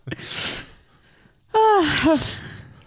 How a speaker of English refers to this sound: What? You're congested. My allergies are... I'm going to be editing out sniffs for the next hour and a half. Yeah, my allergies are really bad.